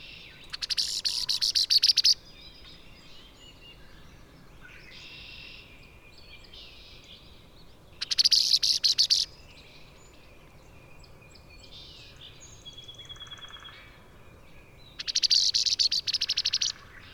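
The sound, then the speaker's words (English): A female red-winged blackbird gives three loud, rapid, harsh sputtering chatters, each about two seconds long and spaced several seconds apart, over a steady background hum of insects. “And I think that's a female red wing nearby. Listen to her sputters.”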